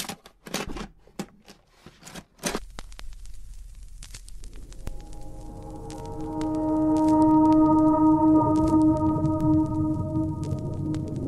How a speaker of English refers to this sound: I'm going to start by putting on some nice, relaxing whale song. Okay?